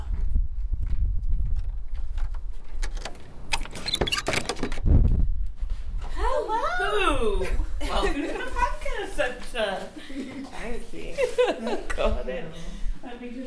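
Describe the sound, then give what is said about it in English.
Keys rattle and a door is banged several times in a burst of sharp, clattering knocks over a low rumble as someone inside opens the closed front door of the Pankhurst Centre; people then start talking and laughing. “I hear her banging around. Keys.”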